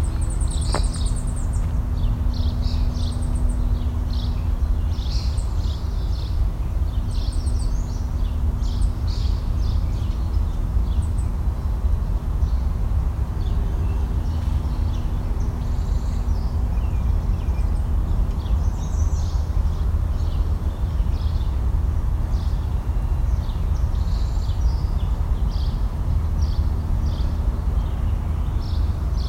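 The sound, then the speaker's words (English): A blue-gray gnatcatcher gives thin, nasal, high-pitched calls, short notes repeated irregularly throughout, heard over a steady low rumble with no talking. “The blue-gray gnatcatcher, which has the nasal bees call.”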